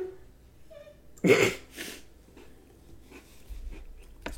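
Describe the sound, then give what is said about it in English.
A puppy lets out one sudden, loud, sneeze-like burst, followed by a softer huff and faint scattered noises. “Is the puppy okay?”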